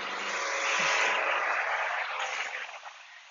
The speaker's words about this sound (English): It's a no-win game if you're always trying to be, sorry, truck driving past me.